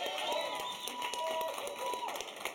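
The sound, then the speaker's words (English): An audience claps steadily throughout, a dense patter of many hands at a fairly even level, with some faint voices and a murmuring crowd mixed in underneath. “Come on, keep it clapping.”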